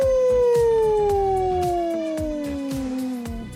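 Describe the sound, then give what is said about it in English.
A single long wolf-like howl, held steady and slowly sliding downward in pitch for a few seconds, loud over a faint rhythmic ticking beat. “The Wolf. Ow, ow, ow.”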